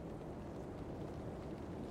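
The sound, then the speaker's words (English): A low, quiet rumble of a train passing underground beneath a rainy street, a steady deep drone that holds evenly for the whole two seconds with no voices over it. “They hear windshield wipers making a swish, swish sound and they even hear the low, quiet rumble of the train passing underground.”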